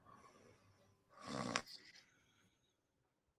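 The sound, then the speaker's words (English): A single snore from a man who has fallen asleep on air rises from a quiet, breathy inhale into a louder rasping burst, then fades into silence. The sound is fairly soft, with no talking. “Your snoring cannot save you from me.”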